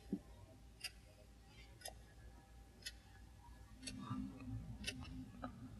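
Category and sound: household object, clock ticking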